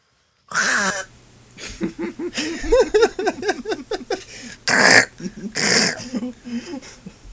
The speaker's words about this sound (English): Imagine me. That was me going into a bookstore. Around civilians. Yeah. Just coughing.